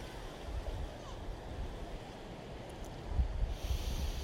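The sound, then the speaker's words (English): A steady wash of ocean waves rolls continuously, a broad rushing surf that swells slightly louder near the end, unbroken with no clear individual crashes. “Listen to the waves.”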